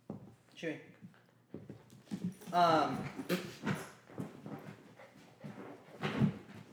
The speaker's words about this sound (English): Dog attack.